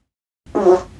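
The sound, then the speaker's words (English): A single short, squeaky fart breaks a brief silence, a tight, tonal, reedy burst lasting about half a second that swells quickly and then tapers off. “Ooh, a squeaker.”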